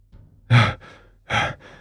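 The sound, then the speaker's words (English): A voice imitates the heavy panting of the role-play character Sisko running up after a battle in a cavern: two loud, breathy gasps, each trailed by a softer exhale, in a slow, labored rhythm with no speech. “Sisko runs up to you all, panting.”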